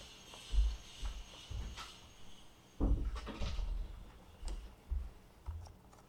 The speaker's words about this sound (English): I'm just going to close the door.